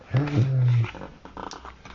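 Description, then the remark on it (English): The Teenage Mutant Ninja Turtles villain Dog Pound lets out one loud, sustained low roar lasting under a second, forceful, followed by quieter, indistinct vocal sounds. “What are you doing here? Dogpat roars.”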